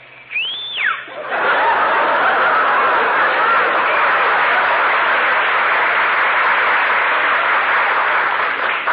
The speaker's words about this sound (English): Whistle through your teeth.